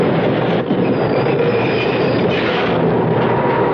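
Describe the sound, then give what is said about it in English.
A subway train from Manhattan rumbles along steadily, a loud continuous roar with faint metallic squeals riding on top and no voices. “It's our stop. We gotta get off the subway.”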